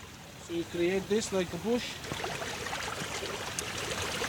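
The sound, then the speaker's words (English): A brief stretch of voice gives way to a steady rush of stream water flowing along a channel, a continuous gentle trickling wash that carries on to the end, as water diverted by a makeshift blockage starts flowing slowly into a second channel. “So you can see the water start going slowly to that area and to the second channel.”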